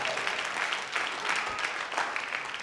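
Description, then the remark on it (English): A church audience at Uncommon Church claps steadily for a few seconds in 2024, a dense, even patter of many hands at a moderate level, with no voices standing out. “Y'all have got to get better at clapping in 2024.”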